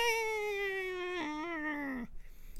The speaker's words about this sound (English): Oh my God, did you hear that? Was that just a Mayan? Did that come through the microphone? Oh my gosh, that sounds like one of those old like hand-operated sirens. Is that?